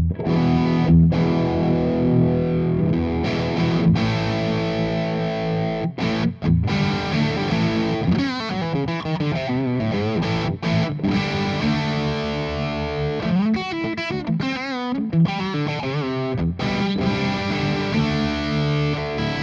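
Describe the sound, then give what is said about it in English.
Electric guitar played through a Boss DS-1 distortion pedal, loud, with sustained gritty chords and bending, warbling lead notes over about twenty seconds; no one speaks. “So that is a Boss DS1 distortion.”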